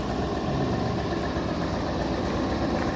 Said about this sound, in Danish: Der er lige en lastbil, der holder lige her. Der er meget bymiljølarm her.